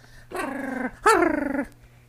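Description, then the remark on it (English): A person imitates a small dog's growl in two drawn-out, harmonic bursts, the second rising sharper and louder, with a faint low hum underneath. “That's how you know you have a little dog, as you're making that sound.”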